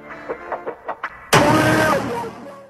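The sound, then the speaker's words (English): A Honda car engine cranks with a series of quick, rhythmic starter pulses, then catches and roars to life, settling into a loud, steady running rumble. “I bought you Honda.”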